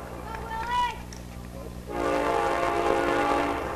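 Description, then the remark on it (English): A train rumbles past an old ballpark during an afternoon baseball game, its horn sounding in sustained, layered tones that swell and hold. Faint crowd murmur and a voice sit underneath at the start. “Get our first train by the old ballpark here this afternoon.”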